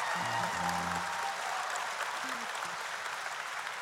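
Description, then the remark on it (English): An audience claps steadily, a dense wash of many hands with no distinct rhythm, while a low organ or keyboard chord sustains underneath and then fades. “Oh, come on, you can clap a little bit louder than that.”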